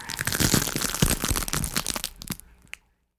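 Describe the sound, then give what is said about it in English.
A loud crunching footstep effect of an astronaut's first step onto Mars, a dense gritty grind lasting over two seconds before breaking into a few final sharp crunches and silence. “One giant crunchy for mankind.”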